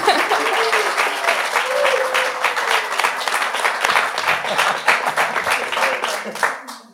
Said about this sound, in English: I wanted to start off first by just giving a round of applause to everybody that's sitting next to me. Right?